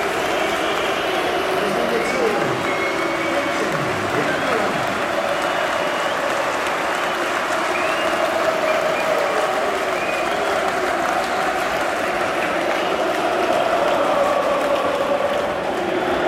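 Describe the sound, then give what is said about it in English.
A stadium crowd cheers as Ronaldo, who just scored for United, comes off, in a loud, unbroken roar of voices and applause that holds steady for the whole stretch, with hints of chanting running through the din. “Ronaldo's coming off. He just scored. Listen how loud it is.”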